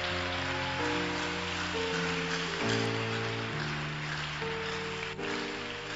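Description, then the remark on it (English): A church audience claps during worship in a steady, dense wash of noise over sustained keyboard chords that shift every second or so, with no voices. “Your clapping is good.”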